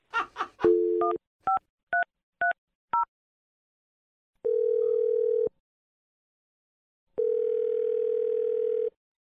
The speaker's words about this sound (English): I'm going to dial the number, and you can make your Awkward Tuesday phone call.